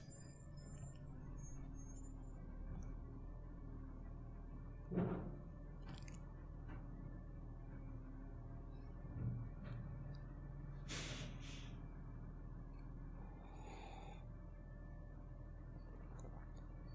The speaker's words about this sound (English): And now I have a garbage truck outside my window. So I hope that doesn't kill the mood, which it probably does if you can hear it in the background.